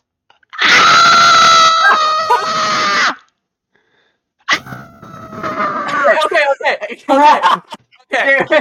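A person lets out a loud, sustained scream lasting a couple of seconds, then after a brief silence more strained, shrill vocal outbursts follow in uneven bursts.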